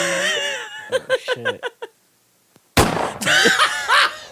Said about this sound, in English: That's the Nerf gun with the sound effects. Fucking, That's a cap gun. That's so, the cap gun.